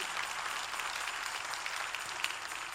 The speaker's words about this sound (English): And we want to receive Brother Michael Washington, the co-chairman of the building committee, and he is not in the city today, but let's give Brother Michael Washington a round of applause.